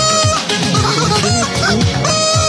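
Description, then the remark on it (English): Chicken clucks pitched up and down to carry a pop song melody, loud, a quick run of sung-sounding clucks over a steady musical backing. “You've all been Rickrolled by a chicken.”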